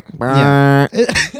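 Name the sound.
sneeze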